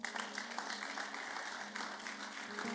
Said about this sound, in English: You see, when there is a sacrifice, you can clap.